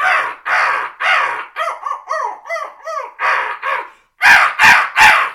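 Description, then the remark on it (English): Crow calls blown on a hunting call, loud: a few long drawn caws, a quick run of shorter choppy notes, then three sharp, hard blasts to finish. No talking. “It's just hammer them, maybe even throw in some longer crow calls, and then at one tone, and then hit them real quick, 3 sharp, like, for example.”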